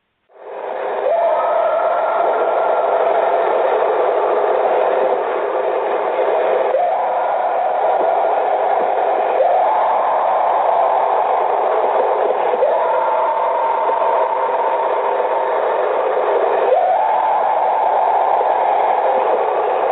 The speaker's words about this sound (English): So here is the reported Bigfoot sound.